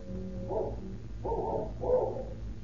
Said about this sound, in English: But the only greeting they receive is the fierce barking of a cur dog, which Gutzweiler and King had seen loping down the road after the two retreating men.